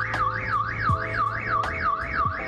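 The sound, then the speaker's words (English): A New York police (NYPD) crime-fighting patrol robot sounds a loud electronic alarm that wails in a fast, steady warble, rising and falling several times a second without pause, over a low background rumble with a few faint clicks. “Not only does this robot sound an alarm, but it can also send messages.”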